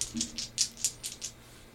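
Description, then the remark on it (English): Four small dice clatter across a hard surface in a quick burst of about seven sharp, bright clicks that taper off irregularly, fairly quiet with a faint low hum underneath; rolled for a charm test with a +1 to persuasion in a game. “Oh, I get a +1 to persuasion, so 4 dice on that one.”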